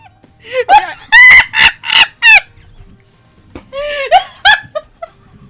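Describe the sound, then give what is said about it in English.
A person imitates a clucking chicken, a burst of loud, choppy bawk-like clucks with a brief pause, then a second run of clucks trailing off, alone. “Cluck like a chicken.”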